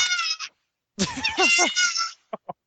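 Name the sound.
cat meowing sound effect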